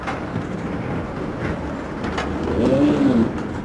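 Steady, even ambience at Queen Alia International Airport in Amman, Jordan, a broad wash of rumble and hiss, with a pigeon's low, soft cooing rising above it briefly near the end. No one speaks.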